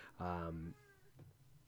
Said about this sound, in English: Can you hear that? Yeah, you could probably hear. That's our roommate's cat.